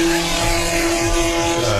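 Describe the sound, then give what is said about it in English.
A mix of race cars, including a Porsche 911 rally car from around 1976 or 1977 and two Devons, roar steadily around a track, a continuous loud mechanical drone with a sustained tonal whine and shifting low rumbles as cars pass. “Here we have really a mixture of cars on the track right now.”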